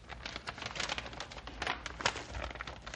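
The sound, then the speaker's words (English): Paper tears and crinkles in a steady, scratchy series of rips and rustles, with irregular bursts of crackling as a stiff, sealed paper packet closed with tape is worked open. No one speaks. “Ah, tough paper and tape.”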